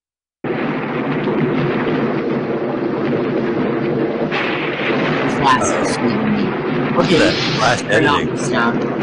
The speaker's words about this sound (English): No, I want to hear it. Yeah. You're just going to hear a thunderstorm